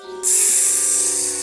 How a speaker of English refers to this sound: almost like it's a espresso machine just trying to steam some tasty, tasty milk.